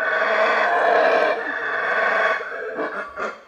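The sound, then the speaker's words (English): A howler monkey roars in a long, loud, rasping drone that holds steady before breaking into shorter, pulsing bursts toward the end. “They roar to warn other monkeys to stay away from their trees.”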